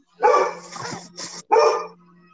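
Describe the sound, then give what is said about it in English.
A dog barks loudly, two strong barks with softer yelping sounds in between, then quiet. “I mean, that's what basically the dog and the cat are communicating about.”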